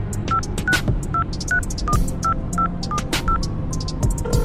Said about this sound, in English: is going to pull out an old-fashioned flip phone, and she's gonna dial it.